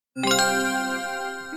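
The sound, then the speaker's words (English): A bright electronic chime, used to introduce an email segment, rings out once with a sharp onset, its clear harmonic tones sustaining and slowly fading over more than a second, loud with no voices. “If you hear that chime, it's time for emails.”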